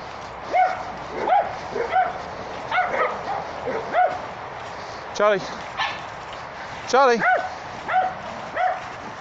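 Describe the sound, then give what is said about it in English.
A dog barks repeatedly some distance away, short yapping barks coming roughly once a second, with a couple of louder, drawn-out yelps standing out midway through. “Charlie likes barking at everyone. Don't know if you can hear him in the distance.”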